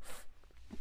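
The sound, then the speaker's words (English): A single quick sneeze from a person with a stuffy nose bursts out with a sharp, hissy rush of air, then trails into faint rustling and a soft low thump. “Bless you.”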